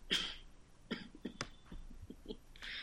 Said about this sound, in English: covers the fact that he's laughing with coughing noises. He doesn't take the glass away from his face